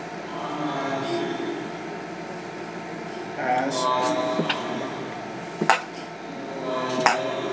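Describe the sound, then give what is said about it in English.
Two short, sharp sneezes break through a steady murmur of background noise and faint clatter, the first a loud burst near the middle and a second, slightly softer one shortly after. “Bless you.”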